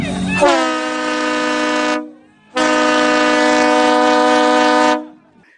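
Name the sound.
train horn blowing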